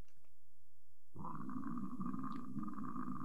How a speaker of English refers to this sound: Is that the scream? That's a scream. You want me to start it? It sounds like a fart.